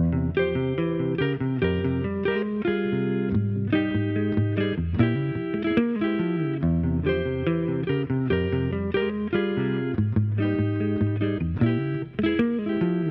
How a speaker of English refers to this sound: And then a B-flat minor arpeggio. I also put some moving thirds on the top. which has a nice sad sound and also echoes the vocal line.